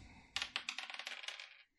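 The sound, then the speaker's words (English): Dice rolled for an attack in a tabletop game clatter across a table: a couple of sharp initial knocks, then a quick run of lighter rattling clicks that fade over about a second before stopping. No voices. “Good thing I rolled a 26.”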